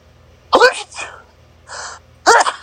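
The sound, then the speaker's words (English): Two loud sneezes about two seconds apart, each a sharp voiced burst, with a couple of softer breathy sniffs or exhales in between. “Bless you.”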